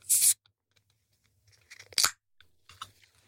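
A drink can cracks open with a sharp, bright hiss, followed after a pause by a few softer crackling, fizzy bursts and scattered small clicks.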